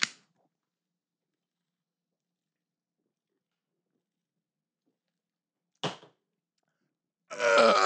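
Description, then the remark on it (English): After a long quiet stretch broken by a couple of short knocks, a loud, throaty burp after drinking Modelo beer erupts near the end. No one speaks. “That was a terrible burp.”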